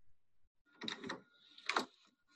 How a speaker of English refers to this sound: I thought it was windshield wipers. It's opening a door. Oh. That sound was terrible.